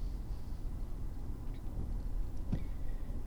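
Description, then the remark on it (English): A car pulls out of a driveway on a drive to work, maneuvering around other cars close to its path: steady low engine and road rumble, with a couple of brief knocks or clunks partway through and no voices. “As I'm leaving my driveway, I have to go ahead and maneuver around some of these cars that are pretty close to my path.”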